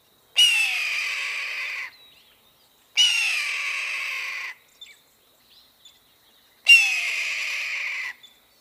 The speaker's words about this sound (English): you'll see a bird screaming very patriotically in a movie